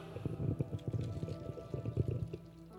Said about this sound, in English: You see me put the water in there, did you not?